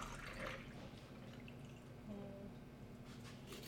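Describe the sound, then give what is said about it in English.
Soda is poured into a Collins glass of cube ice while making a drink, a soft, steady fizzing hiss with faint liquid trickling and a few brief tones, quiet throughout with no one speaking. “and then I'm gonna add the soda. And I'm gonna use this Collins glass with some cube ice.”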